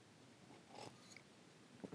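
A quiet sip of coffee from a cup: a short airy slurp, a second soft draw a moment later, then a faint swallow. No one speaks.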